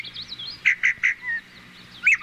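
Yellow-bellied sapsucker calls: three quick, nasal, squealing notes in a row, a thinner drawn-out note, then another burst near the end, clear, with no talking.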